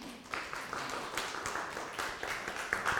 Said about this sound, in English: Yes, that's worthy of applause.